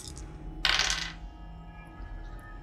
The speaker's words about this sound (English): So I'm going to roll 2d6 plus 2.